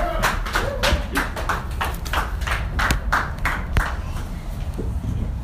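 An audience claps steadily, a dense patter of sharp hand claps at an even, moderate loudness that carries on without a break, with no one speaking over it.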